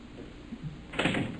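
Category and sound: household object, locked door being tried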